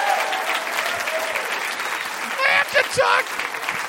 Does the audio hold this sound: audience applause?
yes